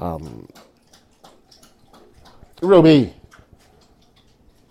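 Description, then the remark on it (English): A female dog laps water from a bowl in a quick, steady run of soft wet clicks that carries on throughout, with a voice speaking briefly at the start and again partway through. “This dog always decides she wants to start drinking water right when I'm talking.”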